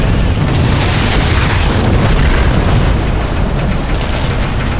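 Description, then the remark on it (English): A house is blown up by a detonator wired into a gasoline tank: a loud explosion roars through the whole stretch, a dense, booming rumble with crackling debris noise that stays heavy without fading, and no voices. “you just leave it for a couple of minutes and eventually it will explode”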